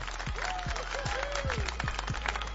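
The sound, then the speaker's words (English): A steady crowd of clapping hands on the show Soul of the Streets, applauding Thanksgiving food, fills the whole stretch, with a few rising and falling whistle-like tones and indistinct voices mixed into the applause. “Yeah, get some claps for that good old food for Thanksgiving, please.”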